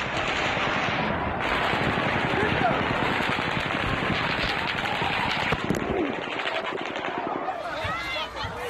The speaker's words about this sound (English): Seconds later, the rapid fire shooting starts again.